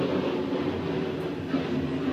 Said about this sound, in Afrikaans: Excuse, die vliegtuig net verbygaan.